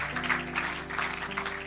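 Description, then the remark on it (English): An audience at a church service claps together in steady, dense applause as praise to the Lord, with sustained low organ or keyboard tones holding underneath. “Go to give him a hand clap of praise tonight.”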